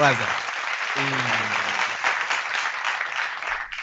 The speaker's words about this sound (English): Come on. Give it to you. Where's your applause?